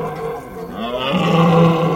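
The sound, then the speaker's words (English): A red deer stag in Hungary roars during the rut, a deep, drawn-out bellow that swells in strength toward the end, loud, with no talking. “Right now, we're listening to the sounds of these deer in their breeding season, or rut.”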